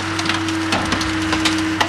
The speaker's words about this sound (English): Today, he's crushing a steel car skeleton and flattening it like a pancake.